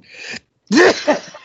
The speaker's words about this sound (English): I'm so upset. I'm sneezing all over the place. Look, I'm having a sneezing fit.